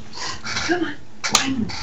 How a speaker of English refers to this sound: Dog. Big dog.